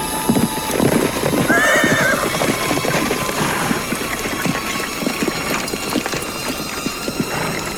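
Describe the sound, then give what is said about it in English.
Horse hooves clip-clop steadily, with a high neigh rising briefly near the start, over a faint creaking, rattling background. “Mighty nice horse you got there, mister.”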